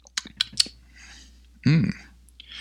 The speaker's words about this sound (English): My voice is a little off this morning. I apologize for that. I'm trying to drink coffee to smooth it out. Let's take another sip.